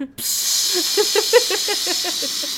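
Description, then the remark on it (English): A steady, loud aerosol spray of shoe sealant hisses as it is sprayed in people's faces, starting after a brief silent moment and running continuously, with faint murmuring voices underneath. “she's like, this is a specially designed spray to make sure zombie makeup doesn't come off in the rain.”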